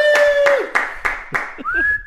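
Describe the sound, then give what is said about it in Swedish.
A single person claps about five times at a steady pace, applauding themselves with a standing ovation, while a loud, sustained whistle holds a tone, then glides upward into a higher whistle as the clapping stops. “Du är den första gästen som har gett dig själv en stående ovation.”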